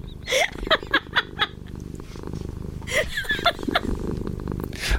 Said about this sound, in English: I'm going with the cat purring as well.